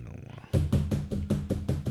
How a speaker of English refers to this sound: Who gives you the right to knock my door like that?